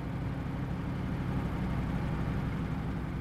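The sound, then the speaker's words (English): A car being driven through a nearly silent town onto Main Street a little after midnight; the engine runs steadily throughout, a continuous low rumble with a constant hum and no talking, fairly loud. “The town was nearly silent as I took the car past Horn's bookshop and down onto Main Street.”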